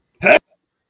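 A single sharp sneeze: one short, explosive burst that is loud and breathy with a slightly voiced edge, then immediate silence.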